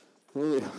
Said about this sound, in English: Oh my God, the dog.